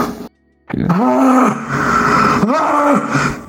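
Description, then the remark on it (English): A human voice imitates a monster like Frankenstein's monster, letting out two long, low, rumbling groans into a mic, the second following after a brief dip, with no words spoken. “Okay, now you just sound like Frankenstein monster.”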